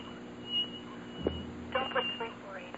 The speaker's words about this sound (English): Now we're going to hear the guinea pig squeaking. Let's hear him. All right, get him up there by the phone. There he goes.